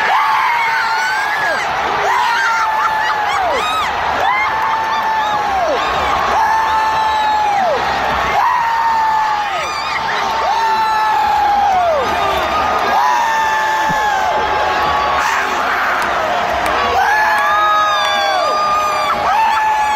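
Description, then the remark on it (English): A large crowd of fans at a Raiders football game, on the home side behind the Raiders bench, screams and cheers nonstop, many shrill voices rising and falling over one another in loud, sustained waves of excitement, with whoops and yells throughout. “The best, you know, that screaming might we might need to put that in, like, I might have to add something.”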